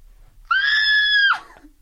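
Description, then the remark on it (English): A single loud, high-pitched human scream held steady for almost a second, then cracking and dropping off abruptly, with near silence before and after. “Wow, I sound very straight when I scream.”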